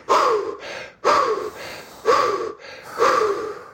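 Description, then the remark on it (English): Four loud, sharp gasping recovery breaths taken after a breath hold, in a steady rhythm about one second apart, each a rushed inhale followed by a quick exhale, with no talking. “And we call that recovery breathing, right?”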